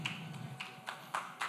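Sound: slow hand clap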